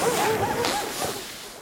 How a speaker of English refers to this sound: Cool, look, it's a group of huskies pulling a sleigh!